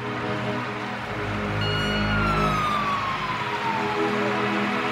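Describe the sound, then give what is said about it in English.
A fire truck siren wails loudly over deep engine rumble as fire trucks come out of a fire station, its tone sweeping up and then sliding down as the vehicle passes, with heavy traffic noise underneath. “As I went by the fire station, fire trucks are coming out.”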